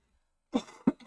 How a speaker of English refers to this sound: As we cough. We're smokers. Don't worry about it.